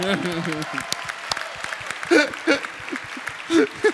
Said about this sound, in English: Round of applause for your interpreter.